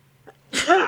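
A single loud sneeze, preceded by a quick faint intake of breath, bursts out sharply and trails off with a breathy, slightly voiced tail.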